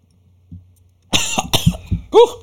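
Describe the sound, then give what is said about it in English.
A burst of several harsh coughs in quick succession after a brief quiet moment, ending in a strained, throaty hack. “I need to stop coughing like that.”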